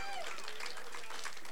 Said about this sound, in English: Someone give him a hand clap of praise.